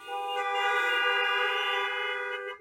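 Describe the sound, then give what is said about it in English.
A loud, sustained car horn blares steadily for nearly three seconds, its bright, brassy tone holding without a break before cutting off abruptly. No voices are heard. “Can I get a big honk?”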